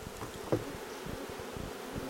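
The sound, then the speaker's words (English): A steady, low droning hum of thousands of small brown and yellow honeybees in a hive just opened with a smoker, one of about ten hives behind a barn, thought to be queenless; rough buzzing texture with one brief louder buzz partway through; no one speaks. “Well, no, it's not a angry sound. It's a hum that I think they're queenless.”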